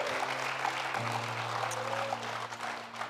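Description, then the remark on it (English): A crowd claps steadily in a dense, continuous wash of applause, giving the Lord a hand clap of praise, while a sustained organ chord holds underneath and shifts to a new chord partway through. “Come on, give the Lord a great big hand clap of praise.”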